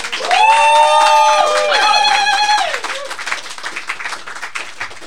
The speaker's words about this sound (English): Can we have more applause for the fabulous, fabulous, fabulous poetry